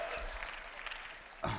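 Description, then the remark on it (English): An audience claps, after hearing that most of the people who signed up are women, in a steady, crackling patter of many hands, fairly soft throughout, with a brief louder swell right at the end. “And here's why, yeah, you can clap,”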